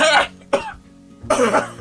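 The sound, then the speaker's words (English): A few sharp, throaty coughs in quick bursts separated by short pauses, with some throat-clearing roughness and no speech. “You see, even your friend they cough.”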